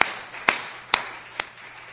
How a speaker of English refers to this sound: That's beautiful service up to this present time. Let's give God a hand clap of praise for it. Hallelujah.